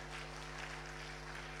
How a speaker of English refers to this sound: Thank you, musicians. Let's give them a good hand clap.